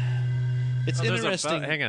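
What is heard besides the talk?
fart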